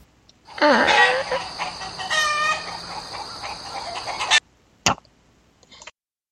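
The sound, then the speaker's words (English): Chickens cluck and squawk loudly together for several seconds, a busy overlapping racket that cuts off abruptly, followed by a short sharp burst and a brief faint cluck. “Anyway, if you can't fix the toilet, can you at least fix the chickens?”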